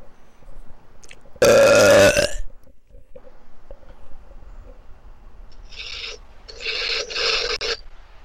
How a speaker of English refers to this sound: Now that's a belch. That deserves a trophy.